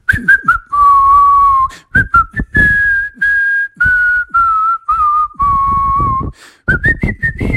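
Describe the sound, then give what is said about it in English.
Someone whistles a cheerful, bouncy melody, clear and fairly loud, in several short phrases with brief breaks between them and no talking. “He had his stick, he was taping it all up, and he was whistling a jolly tune like...”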